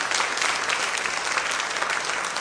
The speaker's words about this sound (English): Come on, give God a big hand clap of praise.